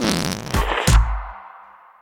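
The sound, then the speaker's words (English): A whoopee cushion deflating with a loud, buzzy, sputtering blat that rises in two low bursts, then fades into a soft hiss and trails off. No one speaks. “If everyone knows the Whoopee cushion, why does no one get credit for it?”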